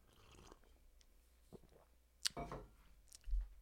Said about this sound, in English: I apologize. I got to take a sip of the coffee.